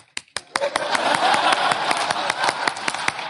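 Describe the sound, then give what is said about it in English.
A church audience claps as praise, in a steady, fairly quick rhythm, about five sharp claps per second, over a continuous noisy wash of background sound. There is no talking. “I mean, at Highview, I mean, when Highview is shouting, this is what white folk do.”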